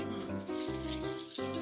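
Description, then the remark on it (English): Dice rattle briefly and continuously, clattering for under two seconds against a steady background of tonal sound, with no one speaking. “Alright. Roll.”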